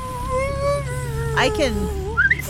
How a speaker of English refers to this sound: I can make little whistling noises. Well, you can do better than me. I go, I put my lips together.